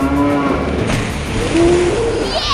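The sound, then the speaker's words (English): A sea cow moos loudly, giving a couple of drawn-out, low, wavering calls over a busy background of watery noise, with no one talking. “Our sea cow punched the monster sea cow into the net!”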